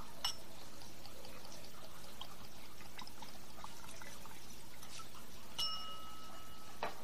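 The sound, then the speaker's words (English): Scotch whisky of 40% alcohol by volume pours steadily into a nosing glass from the Dalmore, a soft continuous trickle with no talking, bracketed by two bright glassy clinks, the second ringing on briefly near the end. “So let's go ahead and pop the proverbial cork.”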